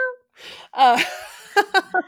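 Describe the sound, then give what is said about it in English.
A cat meows a few times: a drawn-out, wavering meow followed by three short, clipped meows in quick succession, with a soft breathy noise in between. “we get a couple meows.”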